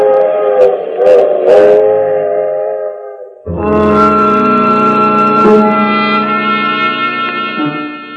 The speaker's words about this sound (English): In Sooner Falls, I watched the train continue on to New York.